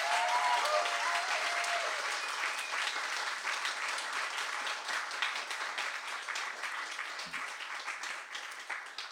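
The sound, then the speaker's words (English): An audience at a Skylight event applauds steadily for about nine seconds to welcome two speakers, a dense wash of many hands clapping that stays loud throughout and tapers only slightly near the end, with a few faint cheers early on. “All right, without further ado, please give a warm Skylight welcome”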